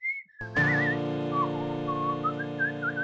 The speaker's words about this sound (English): whistling.